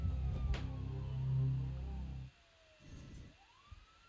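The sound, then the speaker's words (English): Faint wailing sirens slide slowly up and down in pitch over a low rumble. The rumble drops out midway, and a thin rising wail carries on alone. “Does that sound like sirens?”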